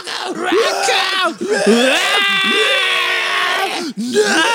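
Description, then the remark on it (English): A person voices a loud, raw, drawn-out guttural scream, straining and wailing in several surges with one long held cry in the middle, intense, imitating an anguished howl. “Yeah, like the most guttural scream ever.”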